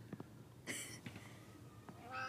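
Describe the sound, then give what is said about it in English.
A cat lets out a short, bright meow, then a second rising mew near the end, with a few soft knocks and no talking. “Oh, that was such a good meow.”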